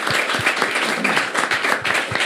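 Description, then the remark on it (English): A crowd at the ATRU Live event in Amsterdam applauds VC for Africa and 1% Club, a dense wash of many hands clapping at once with scattered sharp individual claps standing out, fairly loud and sustained throughout with no voices. “Please give them a warm round of applause for being incredible.”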